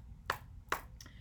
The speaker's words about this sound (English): That's a big clap.